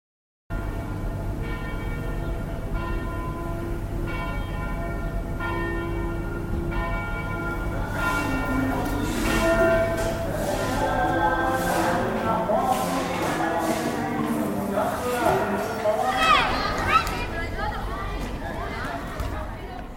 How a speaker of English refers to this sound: Soundscape of the Old City of Jerusalem.